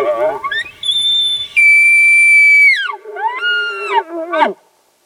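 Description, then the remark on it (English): Imitation elk calls blown on tuned diaphragm calls, mimicking a vocal herd of elk: a rising squeal climbs into a long, loud, high whistle, then drops into a series of shorter, lower, wavering mews before cutting off. “Birds chirped and fluttered about in the trees overhead as I tuned my diaphragm calls and resumed this charade of a vocal herd of elk bantering among themselves.”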